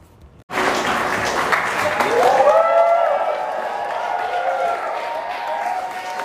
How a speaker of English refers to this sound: That's applause for someone we were told was …. Sorry? But I don't think it was the Tory cheesemaker. Can't actually tell if it's finished or not.